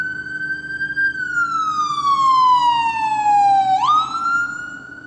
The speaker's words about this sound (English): And that's a real ambulance going by, and that's not a background sound effect.